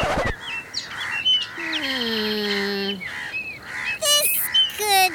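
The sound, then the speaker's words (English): A busy flurry of birds chirping and squawking, several calls overlapping, with sharp high tweets and a few longer, lower drawn-out cries mixed in; the birds are drawn in by music playing. “It seems like the music is actually attracting the birds.”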